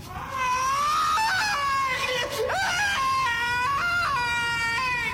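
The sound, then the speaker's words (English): A loud, ululating death scream like a Tarzan yell wavers up and down in pitch for about five seconds, alone, with its wild, yodeling warble breaking and swooping near the middle. “because if he's being strangled, there's no way that that Tarzan-like ululation is coming out of his throat.”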